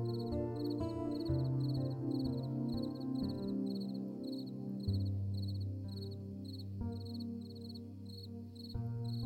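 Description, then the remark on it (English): Crickets chirp at dusk as night falls, in a steady, rapid pulsing rhythm, fairly soft and continuous throughout, layered over a low, sustained tonal hum that shifts pitch now and then. No one speaks. “At first, it is only a few crickets, but their numbers grow as it becomes darker.”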